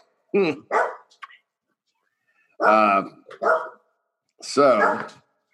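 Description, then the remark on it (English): A dog named Red barks in three separate bursts, each a quick pair of loud barks, with short silent pauses between the bursts. “And there's my dog.”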